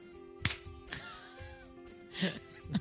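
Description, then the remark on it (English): One sharp, loud hand clap rings out early on. A few softer thumps and rustles follow over a faint steady hum. “So here comes a clap.”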